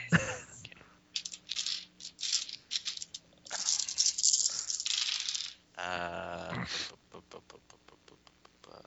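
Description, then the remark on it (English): Four dice rattle and clatter across a hard surface in bursts of sharp clicks, with a brief voice murmuring partway through before the tumbling taps trail off. “Can I roll to distract him with my brain?”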